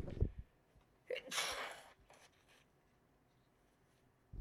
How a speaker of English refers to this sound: Oh my God. I'm so sorry. I sneezed.